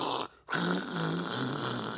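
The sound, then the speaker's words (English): A voice imitates how a bass part, normally a 'boom, boom', sounds distorted to a person with a hearing problem at loud volume. It makes a harsh, raspy, growling buzz: one short burst, a brief break, then a longer sustained rattle lasting about two seconds. “Probably not, because a bass part, which would normally sound like boom, boom, boom, boom, boom, to me sounds like...”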